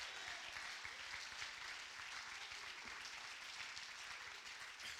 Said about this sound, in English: Come on, I think you ought to clap your hands unto the Lord right now and praise him.